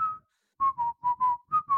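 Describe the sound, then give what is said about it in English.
A person whistles a short melody in clear notes, a phrase of about six tones with brief pauses between them and no talking. “Anything Whistling before that is fine. Pre-90s Whistling.”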